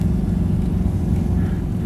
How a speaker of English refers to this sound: We are on the ice. I'm sitting in the car next to Anton.